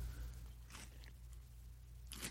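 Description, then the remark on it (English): Crunchy chewing on snap peas, two crisp, close-up bites spaced well apart, fairly quiet over a low steady hum, with no talking. “I mean, I can hardly chew my snap peas right now.”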